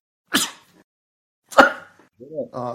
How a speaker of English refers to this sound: Fuck shit, stop sneezing, asshole. I sneezed blood again.